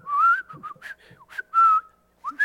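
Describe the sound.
A person whistles a short, bright tune, a few sliding notes separated by brief breaths and pauses, with no talking over it.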